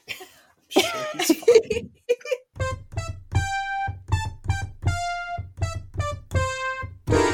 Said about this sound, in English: All right, well, while we're waiting for him, I think I'm going to blow my nose.